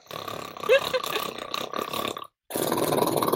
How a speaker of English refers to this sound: All right, and okay, I thought you were just going to keep snoring, so yeah.